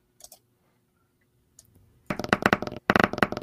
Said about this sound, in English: All right. I'm rolling my d20.